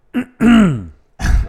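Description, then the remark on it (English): A man clears his throat loudly in three quick bursts: a short grunt, a longer rasping hack with a falling voiced tone, then a final rough throaty scrape. “Let me clear my throat on that one.”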